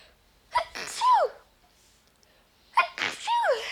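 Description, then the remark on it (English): Two sneezes about two seconds apart, each a sharp intake followed by a loud, explosive burst with a voiced trailing tone. “I've grown up always being blessed when I've sneezed.”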